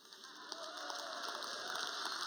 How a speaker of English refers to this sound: So with that said, I want you to give a round of applause to the book of the Bible we're going to look at because it's so abused. It is the book of Leviticus.